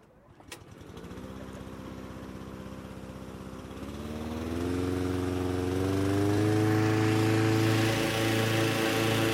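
A small petrol engine drives a big fan blowing air into a hot air balloon to roughly inflate it in Vilnius, Lithuania, with a steady droning roar, a sharp click at the start, then the pitch and loudness climb in steps as it revs up and holds.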